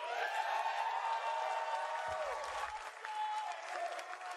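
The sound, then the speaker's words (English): A large crowd at a reveal event for an Avengers video game applauds and cheers steadily, a dense wash of clapping with whoops and shouts mixed in, loud and sustained throughout with no speech standing out. “But before we go, the crowd is riled up.”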